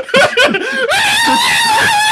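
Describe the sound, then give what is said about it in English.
A couple of short, choppy yelps lead into a single long, loud, high-pitched scream that holds steady for over a second. It is piercing: the classic stock Wilhelm scream. “This is a Wilhelm scream exit.”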